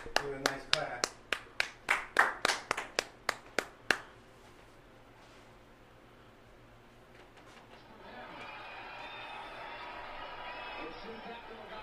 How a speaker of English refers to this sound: I got to clap it up for this.